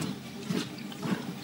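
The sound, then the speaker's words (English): Someone takes a drink of water, with two soft swallowing gulps over a faint, steady liquid hiss. The sound is quiet, and no one speaks. “let me just have some water here.”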